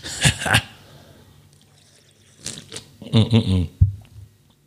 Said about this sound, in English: Let me take another sip of this beer.